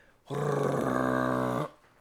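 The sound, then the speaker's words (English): A voice imitates a car's exhaust, rusted after the header, falling off after the car turns a corner and hits a puddle: one loud, rough, buzzing roar lasting over a second. The low growl stays steady, then cuts off abruptly, with no words spoken. “I look under the car, the whole fucking exhaust fell off.”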